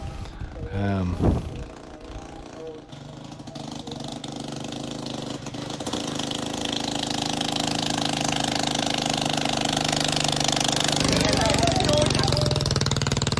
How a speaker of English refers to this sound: Man driving a motorcycle pulling a wagon that's maybe 4 times the size of his motorcycle just passed me. He gave me a smile and a friendly nod.